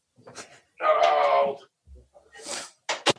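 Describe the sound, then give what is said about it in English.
A cat lets out one drawn-out meow, loud and tonal, followed by a short pause and a few quick hissy noises like brief murmured speech. “But, you know, there goes the cat.”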